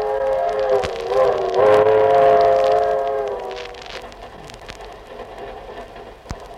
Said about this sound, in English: Gentlemen, immediately after last week's broadcast in New York, Jack Benny and his gang left for California. So now we take you aboard the train where we pick them up one day before their arrival in Hollywood.